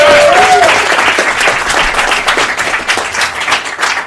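A live audience applauds loudly and steadily, dense overlapping claps filling the whole stretch, with a brief whistle-like tone near the start.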